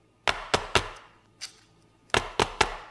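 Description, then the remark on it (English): Gentle taps of a loaf tin filled with chocolate mousse on a surface to smooth the top: two quick bursts of three sharp, bright knocks, with a single softer tap between them and no talking. “Then I'll give it a few gentle taps to smoothen the top.”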